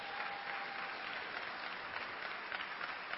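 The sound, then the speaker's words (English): A steady round of applause from a crowd honoring the preaching through the book of Acts, many hands clapping in a dense, even wash of sound that holds at the same level for a few seconds. “I want to give a round of applause for that.”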